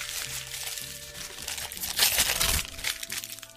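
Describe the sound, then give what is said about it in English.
Wrapping paper crinkles and rustles as a Christmas gift is unwrapped, with a louder burst of tearing partway through before the crinkling settles again. “All right, okay, open yours, open yours.”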